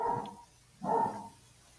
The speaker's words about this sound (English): Also, shout out to the dogs in the background. Dogs agree. Sorry. These dogs never stop barking, but if they're barking to agree with us that Neil is awesome, then bark away, pooches. Bark away.